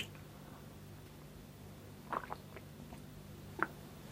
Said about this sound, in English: And I'll sit with a cup of tea, I think. A quick sip of this one, I'll have to make another pot.